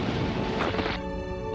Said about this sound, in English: There's been an explosion on the vessel. The hull is destabilizing. Life support is offline.